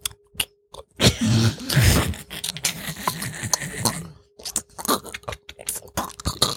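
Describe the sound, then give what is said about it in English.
Wet crunching and chewing of a partially frozen, crunchy egg dish, with irregular bites and scraping mouth sounds that keep going without pause, loud. “You're really chewing that thing up. It was partially frozen. Yeah. It's crunchy.”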